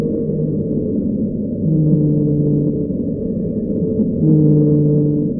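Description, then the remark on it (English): A low, moaning whale call in the 52-hertz range, picked up by ocean microphones once used to listen for submarines: steady droning tones that swell twice, each held for about a second, over a constant rumbling background hum. No one speaks. “Well, when the Cold War ended, they kind of handed those microphones over to scientists, and they heard this very interesting sound in the 52 hertz range.”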